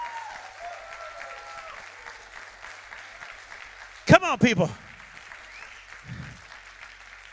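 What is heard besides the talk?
audience applause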